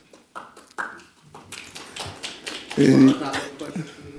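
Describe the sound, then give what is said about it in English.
Weak applause from a single staffer in the back of the room: a run of sharp, uneven claps, fairly quiet and sparse, following a brief bit of voice at the start. “I love the weak applause there, that one guy, the one staffer in the back of the room.”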